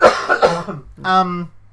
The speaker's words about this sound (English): Excuse me whilst I cough. We'll edit this out in post.